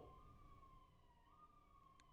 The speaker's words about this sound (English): Sirens. There, that's how we feel. Silence and sirens.